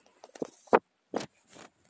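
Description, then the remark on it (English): A kitten named Agatha, lying on a mattress, hisses at a microphone in several short, breathy bursts separated by brief pauses, fairly soft overall with a couple of sharper spits standing out. No one speaks. “She's just hissing at the microphone.”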